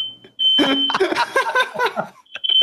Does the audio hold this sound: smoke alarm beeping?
yes